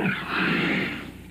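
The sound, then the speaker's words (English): A loud, raspy dragon roar sound effect with a gritty, growling texture holds steady for about a second before tapering off, heard on its own without any talking, in a commercial for the ColecoVision video game Venture. “I hate dragons.”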